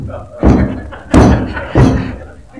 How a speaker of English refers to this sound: Stomping up and down until we were convinced that this was not going to break underneath us.